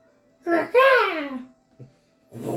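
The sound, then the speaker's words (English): A child's voice imitates the squeaking call of a bird landing on a shoulder: a short yelp, then a longer squeal that slides downward in pitch, followed by a brief chirp and another squeaky burst. “Lands on your shoulder, and it goes squeak, squeak, squeak, squeak. Bird sound.”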